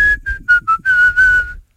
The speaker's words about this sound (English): Okay, listen carefully. Name the song that I'm whistling. Here it comes.